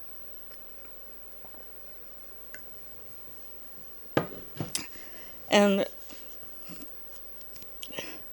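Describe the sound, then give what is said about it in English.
Someone takes a sip of water: a few soft clicks and taps, then a brief wet gulping burst, surrounded by long stretches of near-silence, with one word spoken briefly. “I'm going to drink a little water now.”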